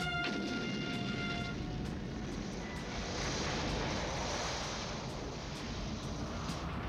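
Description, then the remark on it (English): A loud gun-blast sound effect erupts into a dense, roaring rumble that stays strong for several seconds, preceded by a brief humming tone at the very start. No voices. “That was a gun blast sound effect that without any gunfire.”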